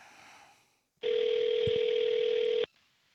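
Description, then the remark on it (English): A loud, steady telephone tone as a phone call is placed to a medical examiner's office holds for about a second and a half, unbroken apart from a couple of quick clicks midway, then cuts off abruptly. No one speaks. “Speaking of death, let's make a phone call, shall we?”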